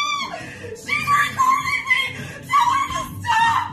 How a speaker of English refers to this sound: But she was like screaming and just flailing and like having like a mental breakdown, but I'm going to play it for you.